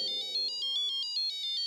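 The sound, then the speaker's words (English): A phone message alert chimes for an incoming "please call me" message: a rapid, even string of bright electronic beeps, with a few soft descending tones underneath. The alert is clear, and no one speaks. “Lo and behold, he sends a "please call me."”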